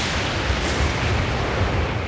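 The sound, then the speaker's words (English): A loud, continuous roll of thunder from a lightning strike, a deep booming rumble with a harsh crackling edge that stays steady for about two seconds, with no voices. “The sky echoed with my wrath as I threw lightning against the land.”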